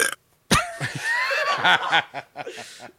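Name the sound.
burp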